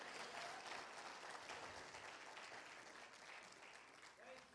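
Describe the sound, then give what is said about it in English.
An audience claps hands to give God glory, in a steady, dense wash of applause that holds loud throughout, with faint voices mixed in beneath the clapping. “Somebody clap your hands and give God some glory.”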